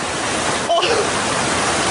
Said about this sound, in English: It's water vapor. And in about an hour's time, someone in Mississippi is going to get wet washing. It will actually rain. I told you. It's raining.